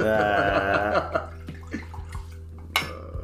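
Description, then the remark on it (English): A drink is poured into a cup, a short gurgling stream with a shifting tone, followed by a few light clinks and taps of glassware. “Yeah, go ahead, fam. Pour up, dog.”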